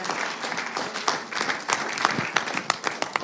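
A crowd applauds steadily, dense overlapping claps forming a broad crackling wash with a few sharper individual claps standing out, holding at a fairly even level throughout.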